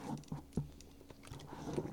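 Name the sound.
sipping water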